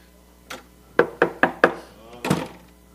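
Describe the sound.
A quick series of four sharp, evenly spaced knocks on a door, fairly loud, preceded by a softer single tap and followed by a brief murmur of a voice.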